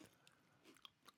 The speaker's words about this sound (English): I know we're just like chewing in the mic. It's gonna be really gross to listen to this, dude.